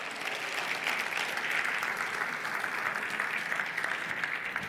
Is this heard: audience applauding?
yes